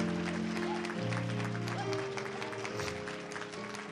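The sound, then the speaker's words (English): A church audience claps steadily for their pastor during a morning service, a dense, continuous wash of applause, with sustained organ or keyboard chords holding underneath throughout. “Can we just give him a hand clap of praise?”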